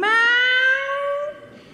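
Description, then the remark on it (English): A single long, loud cat meow, its pitch sliding slowly upward before trailing off, with no other sounds around it. “Meow!”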